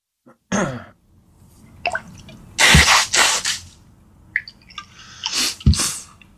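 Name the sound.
sneeze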